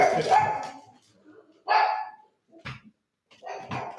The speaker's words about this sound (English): Got someone buzzing in my front door, but I'm sure it's, you know, a package or something like that. Protecting dog is barking away.